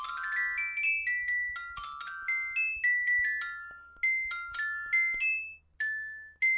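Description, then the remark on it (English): A short, bright musical sting for an improv game: quick chiming, bell-like notes tumble up and down in a bouncy melody, each note struck and decaying, played alone with no talking. “That is, of course, the improv theme for games.”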